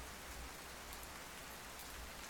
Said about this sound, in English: You can hear the quiet, endless drums of thousands of tiny droplets hitting the ground. But then there's that soft kind of clacking of the rain on the roof.